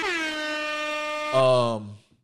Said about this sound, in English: You know what? Yeah, hit that with the air horns, actually.